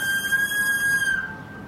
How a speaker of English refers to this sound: What's that whistle sound?